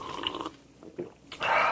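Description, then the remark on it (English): Someone sips a cocktail of gin, limoncello, a splash of Mike's Hard Cranberry and a squeezed maraschino cherry: a short wet slurp and a few soft swallowing clicks, then a louder airy slurping draw at the end, with no talking. “Let me take my sip.”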